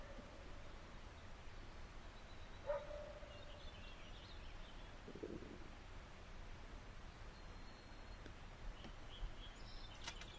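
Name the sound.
dogs barking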